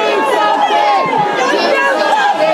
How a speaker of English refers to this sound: At this vigil on Sunday night, in the wake of the shooting, the governor of Ohio tried to address the crowds, but he was shouted down.